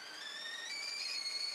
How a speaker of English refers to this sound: Oh, the kettle is boiling.